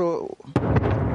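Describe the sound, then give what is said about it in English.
A brief voice gives way to a sudden loud blast from shelling in Lysychansk, eastern Ukraine, its harsh boom spreading into a dense, rumbling roar that fills the rest of the moment. “is not only used to the sound of constant explosions”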